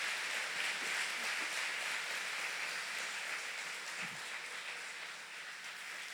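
A church audience gives a round of applause for Jesus in a steady, dense wash of clapping that holds at an even loudness for several seconds, easing only slightly toward the end, with no voices over it.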